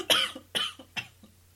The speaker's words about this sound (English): A cough, apparently.